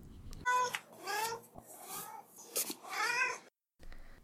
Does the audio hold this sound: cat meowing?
yes